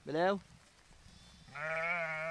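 sheep bleating

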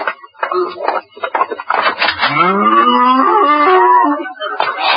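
cow mooing

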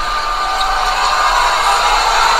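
crowd booing

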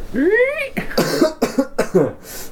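coughing

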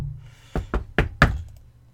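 knocking on wood

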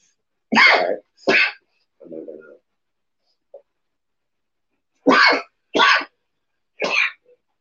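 sneeze

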